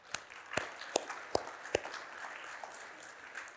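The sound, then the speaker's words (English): Five crisp, evenly spaced hand claps ring out over a low wash of scattered crowd noise that lingers after the claps stop, like an audience beginning to applaud, clapping to thank a volunteer cleanup team. “I think we should clap.”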